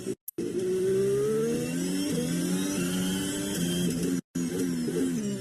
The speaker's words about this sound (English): I can't get over that sound of that Renault engine. Yeah. Eh, it sounds weird.